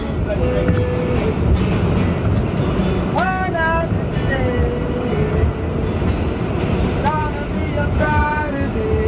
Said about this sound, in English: Dude, they were doing this shit, but the train was going buck wild.